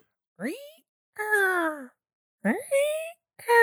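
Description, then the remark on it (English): A voice imitates a very spooky creaking rocking chair, a crow's rocking chair from Wind in the Willows, with four drawn-out, wavering vocal creaks, each bending up or down in pitch, separated by short pauses in a slow back-and-forth rhythm. “Very spooky rocking chair.”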